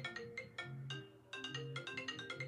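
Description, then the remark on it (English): Phone notification alerts from phones in two different spots, for a group message, play as a bright, repeating electronic melody, with quick chiming tones in two bursts over a low buzzing hum, fairly loud. “Why the shit vibrating in two different spots? Because it's a group.”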